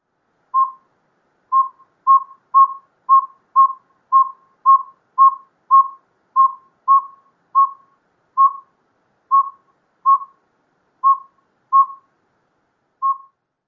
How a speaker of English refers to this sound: The northern saw-whet owl are only heard at night, and are low whistle toots about 2 per second. They typically have a regular rhythm.